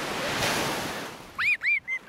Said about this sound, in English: Have a listen to the Baltic Ocean.